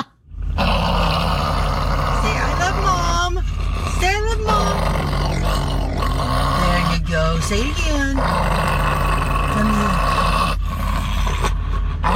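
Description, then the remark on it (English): A dog named Falky growls and grumbles at his owner in drawn-out, rising and falling vocalizations, almost like garbled speech, as if trying to say 'I love you, Mom', loud, with a person's voice talking over it. “He's growling at his mommy while attempting to say, I love you, Mom.”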